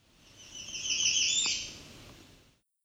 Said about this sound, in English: This was an American Redstart.